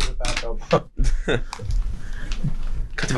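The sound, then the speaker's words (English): A dead pen scratches and scribbles on paper in quick, dry, repeated strokes as someone tests whether it will write, with brief bits of a person talking mixed in. “Okay, this pen's dead.”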